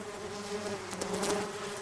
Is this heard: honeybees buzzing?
yes